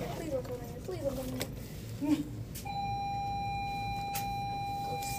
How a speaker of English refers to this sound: Okay. That's the bell.